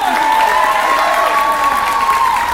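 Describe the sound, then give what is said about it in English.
Loud, steady applause from a crowd for a cheer squad after their cheer, mixed with high-pitched cheering and whooping, a dense continuous wash of clapping with shrill voices rising over it throughout. “Let's give a hand!”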